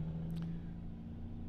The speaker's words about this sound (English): Just stuck in traffic, you know. Road trip, traffic, yay.